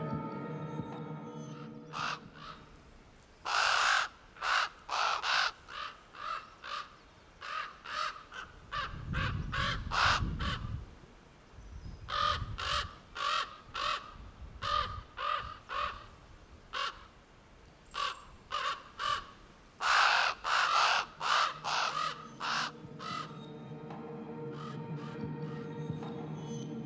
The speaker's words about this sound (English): In truth, ravens are wonderful birds, clever, resourceful, and beautiful. But it's true, their call can be a little on the macabre side.